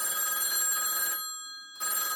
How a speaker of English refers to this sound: A few minutes later, the silence is broken again by the ringing phone.